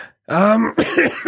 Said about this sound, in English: Sorry. Trying to bury this cough in the backyard.